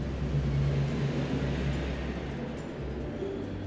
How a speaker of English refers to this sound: And so you'll hear airplanes going by once in a while, and because I am live, I'm not editing this audio, so what I will do is I will stop every time an airplane goes by so that you can, like right now.